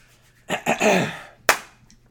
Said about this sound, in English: And he claps his hands, rubbing them a little bit, and he asks again.